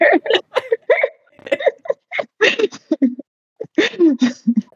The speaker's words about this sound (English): God, and now I've got the hiccup.